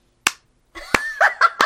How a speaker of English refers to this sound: Oh, I shouldn't have clapped.